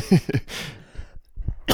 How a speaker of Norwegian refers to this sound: Undskyld, altså jeg hoster og hoster og hoster, og det er, det ser jeg virkelig ikke som et problem.